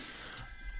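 A telephone rings faintly, a thin high-pitched electronic trill sustained over a low, steady hum, with no one speaking.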